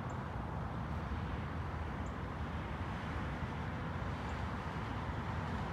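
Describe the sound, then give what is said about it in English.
A steady roar like car traffic rumbles on without pause at the banks of a reservoir in Sweetwater Creek state park, dense in the low end, with a few faint, high chirps poking through now and then. No one speaks. “I know it sounds like cars.”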